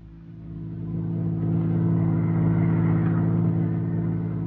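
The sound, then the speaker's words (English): A car engine swells from a low idle into a steady, loud rumble as the vehicle pulls away and keeps driving, with no voices over it. “Now, let's get back into the car before they come out.”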